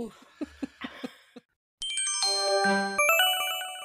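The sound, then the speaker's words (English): After a few short vocal bursts and a brief silence, a loud, bright electronic phone ringtone plays a stepping melody of sustained chiming tones, clear, as a voicemail call comes in. “Hey guys, I think we got a voicemail.”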